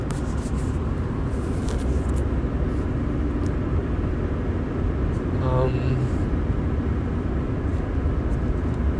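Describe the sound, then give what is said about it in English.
Steady, low rumbling road noise inside a moving car fills the whole recording, broad and constant, with a brief tonal chirp cutting through about midway. “An old school voice memo in the car.”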